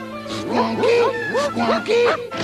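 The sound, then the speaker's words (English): A dog, Squonky, barks and yelps in a rapid run of four or five sharp, pitch-bending calls, fairly loud, with a steady low hum underneath and no one talking. “After I get him home, I'll never have to see this dog again.”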